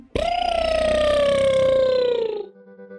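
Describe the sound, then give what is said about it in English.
A voice imitating Peter's crow lets out a long, loud crowing call like a rooster, one sustained high tone that slides gently downward for over two seconds before breaking off. “What did his crow sound like?”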